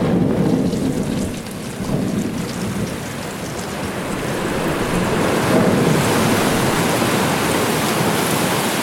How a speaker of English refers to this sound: Even the sound of the ice is the sound of us, of our ship, crashing into it.